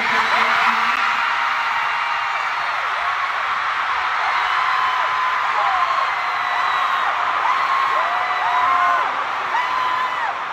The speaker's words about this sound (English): Notice there are some new outfits in the show. There's some new costumes. Now, the crowd's responding because these are clues she's giving out.